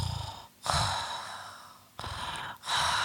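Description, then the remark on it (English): A voice imitates a man's loud, heavy respirator-like breathing while he sleeps: two long, hissing breath cycles, each a rasping inhale followed by a drawn-out exhale, forceful with no words spoken. “It's that real loud breathing.”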